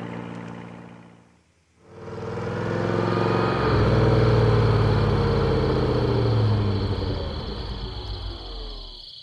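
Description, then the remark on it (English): A car engine hums steadily, a brief dip near the start, then a loud rumbling drone with shifting low tones as the vehicle slows down to a stop so water can be put in the radiator; no one speaks. “What are we stopping here for? I gotta put some water in the radiator.”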